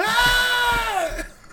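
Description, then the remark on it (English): A goat-scream sound effect played from a computer soundboard: one loud, drawn-out scream lasting over a second, its harsh wavering pitch sliding downward near the end, with no talking. “That was a goat screaming, too, wasn't it?”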